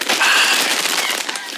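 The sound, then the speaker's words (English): Loud, continuous crunching of ready salted crisps being munched behind a microphone, a dense crackly texture with sharp little snaps running through the whole moment, without a clear pause. “Are you anyway, going to be just bare munching behind a mic,”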